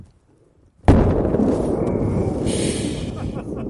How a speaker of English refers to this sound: The world's biggest aerial firework was a fiery fail.